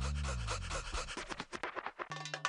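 A dog pants quickly and close up, a steady run of short breathy huffs lasting a couple of seconds, with a low hum entering near the end.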